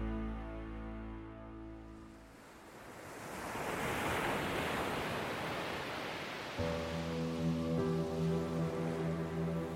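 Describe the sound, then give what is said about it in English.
A single ocean wave surges in and washes across the shore with a loud, hissing roar, framed by sustained musical tones before and after. “Dee was sitting down, the waves pushing around her waist.”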